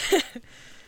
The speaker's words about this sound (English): What new accent will this dice roll bring? Here we go. Good luck, everyone. Go on, here we go.